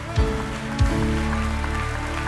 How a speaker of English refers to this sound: For all the men, if you got a good man, you should stand on your feet, clap a little bit. Let him know how proud we are.